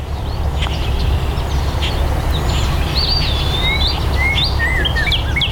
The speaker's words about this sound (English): During hammer-free spells, you can hear the birds loud and clear like I did.